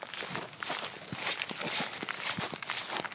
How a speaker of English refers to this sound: It's us walking in this grass.